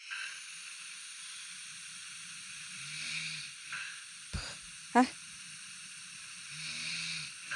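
A recording made during the night of a person snoring in their sleep: two low, rattling snores about four seconds apart, with a steady breathy hiss between them and a couple of sharp clicks in the middle.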